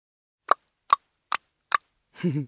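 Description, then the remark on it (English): Four sharp mouth clicks at an even, steady pace, each crisp and bright, demonstrated as a sound to make while singing a children's song, followed by a short voiced sound. “Get your mouth clicking sound ready, like this.”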